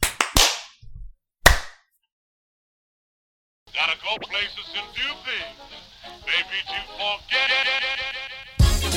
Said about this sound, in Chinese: 来 ，three, two, one， 拍手。